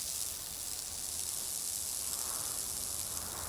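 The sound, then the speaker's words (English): A medical spray from a Gaia's Love field med kit hisses steadily for a few seconds as it seals a bullet wound, a soft continuous airy spray with no talking over it. “We used one of our Gaia's Love field med kits. The fungus locates the bullet for extraction, and the spray seals the wound.”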